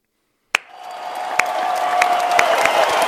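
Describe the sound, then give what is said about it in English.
After a moment of silence, a sudden sharp crack sets off roughly 100 to 120 kids in a library cheering, whistling and clapping, the roar swelling steadily with scattered sharp claps and a sustained whistle tone running through it. “120 kids that just cheering, whistling, clapping, screaming.”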